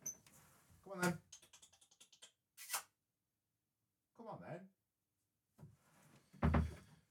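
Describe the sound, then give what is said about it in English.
A door is handled and opened for a cat: rapid latch clicks and rattles, a sharp knock or bump, then a short voiced sound and a louder thump as it moves. “Cat's at the door.”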